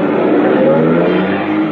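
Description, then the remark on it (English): An old-model car that was parked at the street revs its engine with a steady, droning hum as it pulls away, fairly loud, with no voices. “Then when I walked toward him, he scurried out of the drive and slipped into a car parked at the street.”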